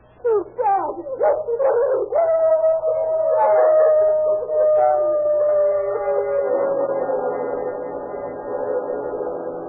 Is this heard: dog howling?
yes